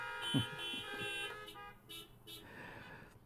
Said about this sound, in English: Yeah, at least one honk.